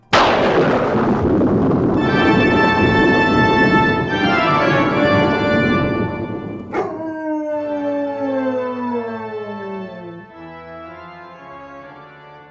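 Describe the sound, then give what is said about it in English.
A dog howls loudly, a long wavering howl that rises then slides downward, followed by a second drawn-out howl that trails off, with no one speaking. “Who is that howling in front of Rudolph?”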